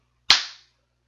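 A single sharp hand clap with a sudden loud, bright attack that decays quickly, standing alone with no talking around it.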